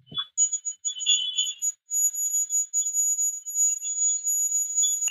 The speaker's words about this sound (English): And I think the reason that I kept that clip is there aren't any EVPs or anything on the spirit box, but the temperature gauge does sound like Morse code.